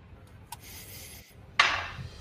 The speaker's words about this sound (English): Fucking dice, what is this? I rolled another one.